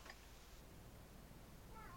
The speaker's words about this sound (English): Meowing like it's his job.